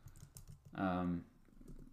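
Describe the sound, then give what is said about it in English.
Quiet, steady tapping of a computer keyboard, quick keystrokes in an irregular rhythm, briefly covered midway by a short voiced sound from someone. “Why am I typing?”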